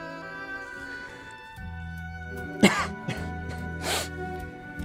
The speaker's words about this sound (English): That wasn't crying, that was coughing.